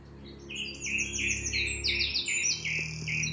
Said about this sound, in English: Just had to pause and take in this astonishing performance by Song Thrush.